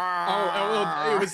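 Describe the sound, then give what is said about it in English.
A Santa toy makes a cow-like moo, one drawn-out, wavering low tone that holds steady for over a second, moderately loud, with no other sounds around it. “I thought it was a moo.”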